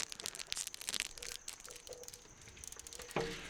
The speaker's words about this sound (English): I'm crumpling a napkin.